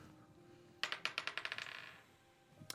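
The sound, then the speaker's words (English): A die, rolled for a wisdom save and landing on 11, clatters across a hard tabletop in a quick run of bright, accelerating clicks that fade out, followed by one last sharp tap. Fairly loud, with no voices. “This is my regular dice tonight.”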